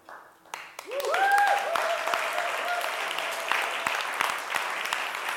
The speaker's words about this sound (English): If you have ever served in our kids' church on a Sunday morning, please stand up. We'd just like to applaud you and thank you one more time.